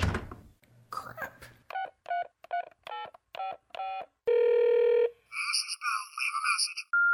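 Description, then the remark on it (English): A phone handset clicks, then a quick run of about seven electronic keypad tones is dialed, followed by a steady ringing tone and a warbling electronic trill as the call goes straight to voicemail, all clear with no talking. “you must be on the phone because this went straight to message.”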